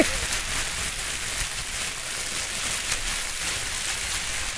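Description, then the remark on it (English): Pink tissue paper being crinkled and rustled steadily, a dense, crackly hiss of tiny snaps that sounds almost like a small fire or light rain, with no talking. “I want to keep this paper around because it would be good for fire sound effects.”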